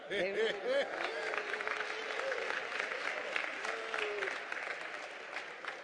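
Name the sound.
audience hand clapping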